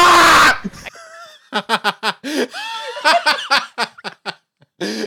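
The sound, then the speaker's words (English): A short, harsh burst of shrieking yell, as if a person imitates a scream, a player screaming in voice chat on dying while playing Valorant, followed by several rhythmic bursts of laughter. “So when I died, I just screamed in the voice chat.”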